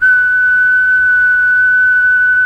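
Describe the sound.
A single long, steady whistled E, a whole note held at one pitch for over two seconds, loud, with no other sounds and no talking.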